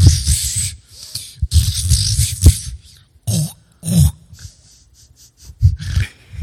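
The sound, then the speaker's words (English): Breathy snuffling and snorting from a hyena in the bushes, at first taken for a puppy, in short irregular bursts with brief pauses between them, loud with no talking. “Oh, it's a puppy.”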